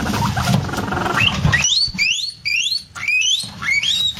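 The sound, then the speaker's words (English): Two guinea pigs, Charlie and Emily, squeak during mating while Emily is in season, a run of repeated high, rising squeals in quick bursts, fairly loud, over a low rustling rumble. No one speaks. “This is Charlie and Emily mating guinea pigs.”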